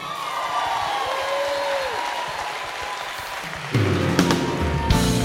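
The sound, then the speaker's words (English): An audience at Bridge Church applauds steadily to welcome the man leading worship, with a dense, even clatter of clapping, punctuated by a sliding whistle and scattered cheers; toward the end a sustained tonal sound joins over the continuing applause. “And this man needs no introduction, But would you give a round of applause leading us in worship,”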